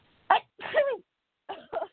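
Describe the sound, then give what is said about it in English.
An abrupt sneeze with a sharp opening burst and a voiced, gliding exhale, followed after a short pause by two quicker bursts of breathy sound. “Oh, I feel like I'm going to sneeze.”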